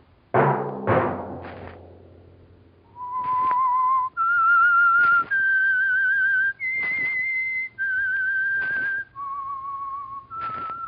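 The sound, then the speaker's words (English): A few sharp percussive hits open, then a clear whistled melody of sustained, steady notes moves through a short tune, loud with no talking; the whistled signal of the Signal Oil Company radio program The Whistler. “Let that whistle be your signal for the Signal Oil program, The Whistler, each Wednesday at this same time.”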